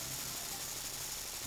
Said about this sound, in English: And the machinery in your specific section, this like press where you put the aluminum tops onto the cans, begins to vibrate really, really rapidly.